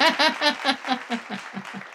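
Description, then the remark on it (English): A short canned applause sound effect from a soundboard button plays on its own, with quick rhythmic bursts mixed with cheering voices that grow steadily fainter over about two seconds. “There's the little applause button.”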